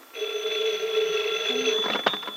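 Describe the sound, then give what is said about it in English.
A telephone rings loudly and steadily for about two seconds, a bright sustained electronic trill, ending with a few clattering knocks as if the receiver is being picked up. “Oh, excuse me, Freddie, there's a phone.”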